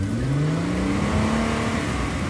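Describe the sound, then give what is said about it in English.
A Ford Mustang car engine revs with a deep, steadily rising growl, loud, holding strong for a couple of seconds with no voices over it. “The Mustang is revving up.”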